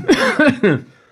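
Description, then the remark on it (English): Three quick, rough coughs burst out close and loud, with a voiced, almost laughing edge, then trail off into quiet. “I made him fucking catch COVID with that joke. Maybe get a rare cough.”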